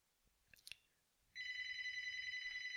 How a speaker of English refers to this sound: Forgive my phone. It's a home phone, not my cell phone. Can't do anything about that one.